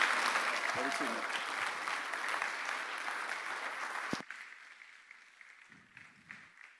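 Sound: wild applause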